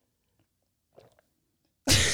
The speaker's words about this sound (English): ASMR. Gulp. Listen to … gulps.